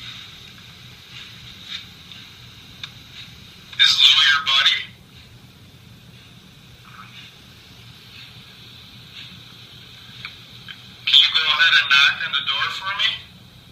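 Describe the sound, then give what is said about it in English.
Two rough, raspy growl-like bursts, picked up by both a camera's audio and a digital recorder during an EVP session in a room of a home, rise out of a steady electronic hum and hiss. The first is short, and the second, several seconds later, is longer and just as loud. “And throughout that, we picked up on both of our camera's audio and our digital recorder audio, a growl.”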